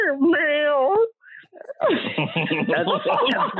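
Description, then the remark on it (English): A person does a long, wavering vocal imitation of a cat's meow, loud, followed by a short pause and then lively talking and laughter from several people. “That's my best cat. It was amazing.”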